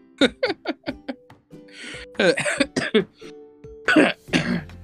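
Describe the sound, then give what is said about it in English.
A loud run of harsh throat clearing and coughing: a rapid string of short hacking bursts, then rougher, raspier coughs with brief gaps, with no talking. “Making me cough.”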